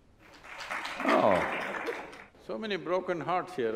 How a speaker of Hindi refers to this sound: यहाँ बहुत से टूटे दिल हैं जो तालियां बजा रहे हैं।